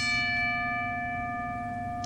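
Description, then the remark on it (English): A single ringing bell with a sustained, shimmering tone that hangs steadily and slowly decays, heard loud with no voices over it. “let's get right into it and ring the bell.”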